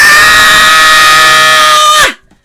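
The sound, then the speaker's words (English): A single loud, full-force human scream held at a steady pitch for about two seconds, strained, then breaking off sharply as the voice drops away into silence. “But you literally take all your might and you go, ah!”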